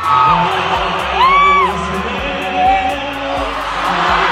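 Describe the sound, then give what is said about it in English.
A concert crowd in Portugal cheers loudly and steadily for a marriage proposal, with a couple of high, rising-and-falling whoops standing out above the dense roar of voices. “Oh my gosh, the crowd quickly joined in on the serenade and cheered for the epic proposal that followed.”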